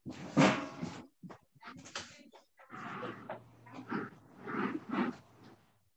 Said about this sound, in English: But Pastor, hold on. Let me close the door to the conference.